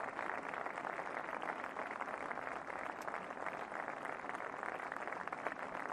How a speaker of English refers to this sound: So the applause for Isaiah as his body is stretchered off.